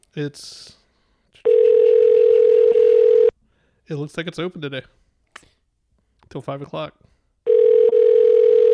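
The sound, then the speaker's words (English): A telephone ringback tone rings twice on an outgoing call to a library, each a steady two-second hum separated by a long pause, with someone talking briefly before and between the rings. “So we just gotta let it ring until someone picks up to use the phone and go, oh.”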